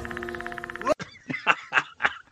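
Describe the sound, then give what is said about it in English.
In a music track, a buzzing, pulsing synth-like drone cuts off abruptly, then about five loud, raspy croaking calls follow in an uneven rhythm, harsh and guttural with no talking. “And then there's some sort of like croaking sound. Listen to it again. It's like a croaking sound. It sounds like the Predator.”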